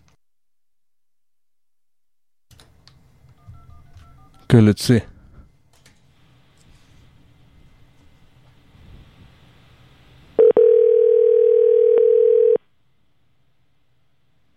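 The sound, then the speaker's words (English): A short series of telephone keypad tones plays under brief speech and handling noise while redialing a call after the signal was lost, followed by a loud, steady dial tone that holds for about two seconds, then cuts off. “Okay, let's try to call him back.”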